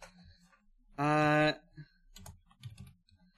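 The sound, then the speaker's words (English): Scattered keystrokes clatter on a computer keyboard in short irregular bursts, fairly quiet, interrupted early on by a loud half-second buzzing tone. “Typing we'll get in there.”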